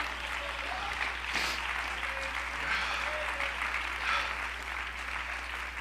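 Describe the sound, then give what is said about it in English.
An audience claps their hands unto the Lord in sustained, dense applause, a steady wash of many hands clapping together with a faint murmur of voices beneath. “Oh, clap your hands unto the Lord right now.”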